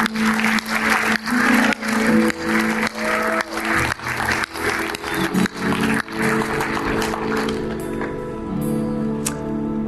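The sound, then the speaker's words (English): An audience breaks into loud, dense applause for those giving their life to Jesus, many hands clapping steadily over soft sustained musical tones, with the clapping thinning out in the final seconds. “Can you just give a big round of applause for those giving their life to Jesus?”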